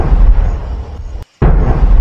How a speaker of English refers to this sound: Also cue the cannons for Harmonious and Enchantment, the both of the 50th nighttime spectaculars. I request two cannons. Mm-hmm. Yeah, two cannons.